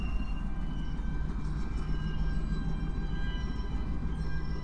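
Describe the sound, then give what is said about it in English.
Railroad cars are switched and put away, rolling slowly with a steady low rumble and thin metallic whines and squeals riding over it, continuous, with no voices. “They're putting their cars away here, huh?”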